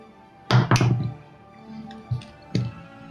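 A small six-sided die, rolled during a tabletop game, clatters onto a hard surface: a sharp double thunk, a few softer rattling taps, then one last knock as it settles, landing on four. No one speaks.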